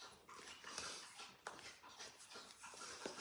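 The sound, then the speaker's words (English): Dogs lapping water in the morning, a soft, wet, irregular splashing with occasional sharper laps and a faint whimper, fairly quiet with no talking. “It's time for drinking of the dogs.”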